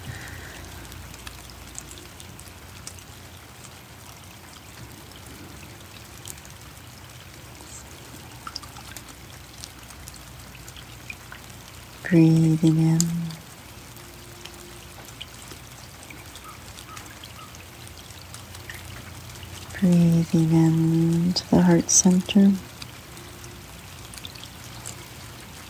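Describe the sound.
A steady, soft hiss of falling rain runs through the whole recording while a quiet voice speaks slowly. Two brief, louder tonal swells rise above the rain partway through.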